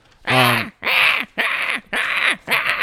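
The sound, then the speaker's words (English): A cheesy bird screech from the horror movie Birdemic repeats five times in quick, evenly spaced bursts: loud, harsh and raspy shrieks, each about half a second long, with no talking over them. “That was the literal bird noise from the movie.”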